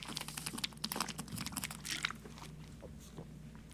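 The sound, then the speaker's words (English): Rapid, uneven clicking of keys on a computer keyboard, fairly quiet, with a steady low hum underneath and the tapping thinning out toward the end. “Just don't touch the keyboard.”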